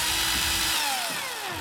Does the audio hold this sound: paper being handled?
no